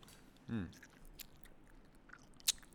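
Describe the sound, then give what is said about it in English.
Close-up chewing right at the microphone, with a short murmuring vocal sound early on and a few sharp, crunchy mouth clicks spaced apart against a quiet background. “But I probably shouldn't chew into the microphone either.”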